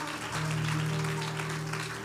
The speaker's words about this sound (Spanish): Dele un fuerte aplauso al Rey de Reyes. Give a great applause to the King of Kings.